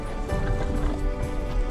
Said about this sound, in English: You can certainly handle a horse. That there's a horse. Horse.